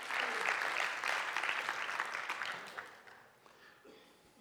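An audience claps for God, steadily in a dense wash of many hands, loud at first and then thinning and fading toward the end, with no voices standing out.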